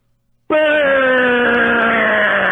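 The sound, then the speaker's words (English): Over the phone, a voice imitates a fart using just the mouth: one loud, sustained buzzing raspberry that starts abruptly after a moment of silence and holds for about two seconds, its pitch sagging slowly downward. “I can accurately depict it over the phone. I am using just my mouth for this.”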